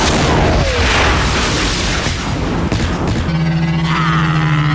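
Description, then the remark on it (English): A loud, sustained crash as Malhonic of the planet Malastare's podracer, taken out by Sebulba near Mushroom Mesa, hits a rock wall and tears apart, a dense roar of grinding and shattering debris, giving way after about three seconds to a steady droning engine hum. “And his pod hits a rock wall and shreds into a million pieces.”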